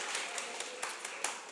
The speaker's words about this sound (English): And then put it on top. I mean, that deserves some applause. I mean, that's like right in live action.